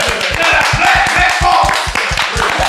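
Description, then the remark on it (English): Rapid, steady clapping in a quick even rhythm, loud and sustained throughout, over a dense wash of background noise. “Clap that back up again.”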